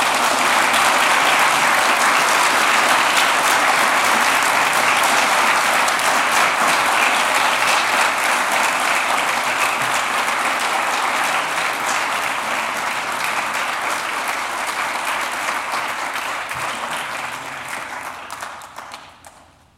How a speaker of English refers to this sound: Give another round of applause. That was wonderful. Thank you.